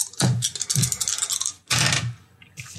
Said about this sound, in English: They'll match our bet. We can come away from this with 20 credits. Roll the dice.